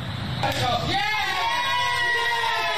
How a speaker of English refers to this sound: There was applause.